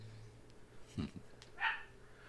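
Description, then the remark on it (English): A female pet dog lets out two short barks about half a second apart, the second higher and sharper, both fairly faint over a low steady hum with no one talking. “So it's really uncommon that she'll, like, freak out. She probably saw a squirrel.”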